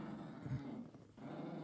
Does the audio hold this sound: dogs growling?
yes